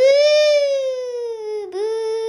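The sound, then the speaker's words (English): A voice imitates a passing ambulance siren to illustrate the Doppler effect, holding one loud, sustained tone whose pitch slowly slides lower, briefly dips near the end, then levels off at a lower note. “And it's kind of like, you know what I always think of when I think of the Doppler effect? I think of ambulances.”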